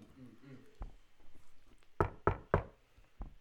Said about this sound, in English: There is a knock on the villa door as the guard.